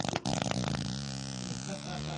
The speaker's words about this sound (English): And that is not a sound effect. That is an actual fart, Tony.